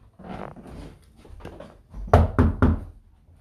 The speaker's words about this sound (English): Well, knock on the door again, then.